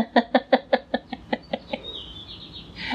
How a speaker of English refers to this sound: enjoying the lovely spring evening weather with the windows open, so people might hear that super annoying mockingbird. Yeah, so if you hear a bird or other assorted outdoor noises, just know that I'm going to throw a lemon at it when we're done.